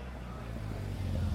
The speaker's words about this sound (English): Soon after, another vehicle passed by, and the sensitive olfactory hairs within my nose were once again defiled.